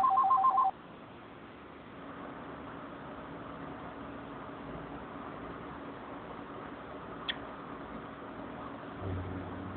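telephone ringing

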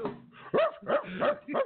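dog barking

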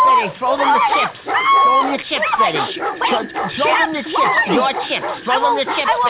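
dogs barking and whimpering

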